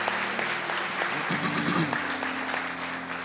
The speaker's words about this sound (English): It's so excellent. Let's give them a round of applause and thank them for that. Wonderful.